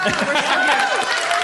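Audience applause fills the moment, a dense, steady wash of clapping mixed with crowd voices and cheers, loud and sustained without a break.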